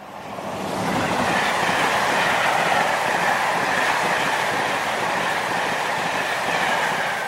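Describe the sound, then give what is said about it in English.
A slam-door electric train rumbles steadily along the rails, a continuous loud roar with rhythmic clattering of wheels over track joints and a faint metallic whine above it. “They made so many just iconic noises, the slam door.”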